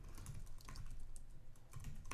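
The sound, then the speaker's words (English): Quick, uneven typing on a computer keyboard, searching the film title Tree of Life: a run of light clicking keystrokes with a low steady hum underneath and no voices. “I can hear your little keyboard.”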